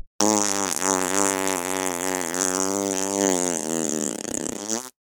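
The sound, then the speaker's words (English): A long, loud fart sound with a steady buzzing, reedy tone that wavers slightly in pitch and sputters toward the end before cutting off abruptly, with no talking. “Yep, farts.”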